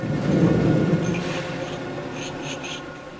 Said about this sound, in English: That sound you hear is the sound of peeled white onions, dozens of them at a time, running through a giant machine that dices them.